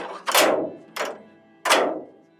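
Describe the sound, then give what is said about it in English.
Heavy blast doors of a Cold War bunker slam shut three times in succession, each a loud, booming metallic impact that rings out and fades before the next; no voices are heard. “And as you can see, they're quite big, and they do, when they're shut, make quite a definitive noise.”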